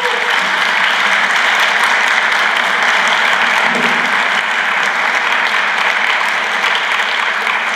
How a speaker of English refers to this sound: If you're a child in this church, under 18, you can just stand for one second. And I just want the rest of us adult members to just clap and to thank God.